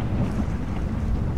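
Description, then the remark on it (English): Rolling thunder rumbles low and steady, a deep continuous growl with no distinct cracks, fairly loud and heavy across the whole moment with no voices present. “And as that another series of thunder happens, you slink your way in.”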